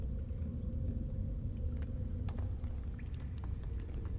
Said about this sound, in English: There's a, again, you can hear the crackle of the fire on the other side as the rumbles start to subside.